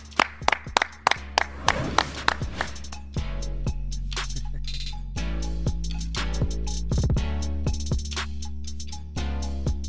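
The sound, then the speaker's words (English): A handful of sharp, irregular hand claps ring out over a few seconds, then give way to a steady low droning hum with only scattered faint taps. “Clap it up.”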